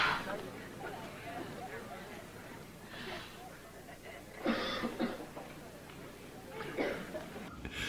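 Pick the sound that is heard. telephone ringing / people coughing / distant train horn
people coughing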